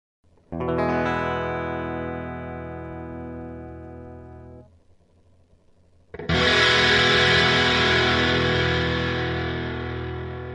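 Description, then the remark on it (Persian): A guitar strums an E major chord with a clean tone and lets it ring out, then after a short pause the same chord returns heavily distorted, loud and buzzing as it sustains. “یه آکورد می ماژور رو روی گیتار به شکل ساده و همراه با صدای دیستورشن با هم بشنوید.”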